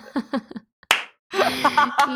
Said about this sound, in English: Oh my God. Woo! Thank you. You can slow down that clap,